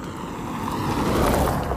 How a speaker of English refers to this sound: And it's used for all things. You know, it could be a bike trail if you ride bikes, be a running trail if you run. You know how that works, right? And for a speeding car to go by.